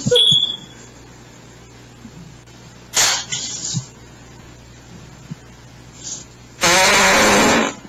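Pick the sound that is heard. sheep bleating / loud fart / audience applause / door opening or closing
loud fart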